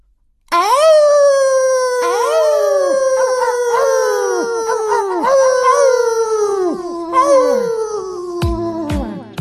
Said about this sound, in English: At this, a moment I might call maximum confusion, both us Astropups simultaneously began to howl.